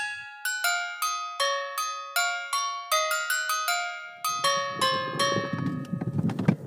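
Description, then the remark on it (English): Clear, bright horse bells ring in a steady rhythm, loud, as a one-horse open sleigh moves through snowy fields and forest in Norway; partway through, a rough scraping, crunching noise rises beneath the chiming. “We're literally dashing through the snow in a one-horse open sleigh.”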